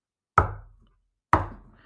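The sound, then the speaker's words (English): Two heavy, separate knocks of a fist against glass, about a second apart, each a loud thud with a short ringing decay, followed by silence. “It's almost undoubtedly the sound of a fist on glass.”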